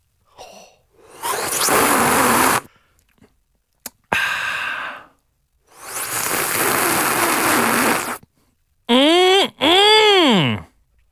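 Nippy's milk is sipped through an extended, bent straw in several long, breathy slurping pulls, followed by two short squeaky, pitch-bending whistles as air catches in the straw.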